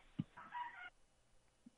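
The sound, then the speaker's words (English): A short, high-pitched squeak, like a door creaking on its hinges, lasts about half a second after a brief thump. A faint knock follows in otherwise quiet surroundings. “Was that a, I was like, is a door squeaking or? It may have door squeaking, yeah.”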